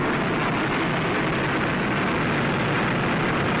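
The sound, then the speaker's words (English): A hot air balloon burner fires in one loud, unbroken roar, a broad rushing whoosh that holds steady for the whole few seconds with no voices over it. “After the balloon's gone up, it's full of dead flies from this burner.”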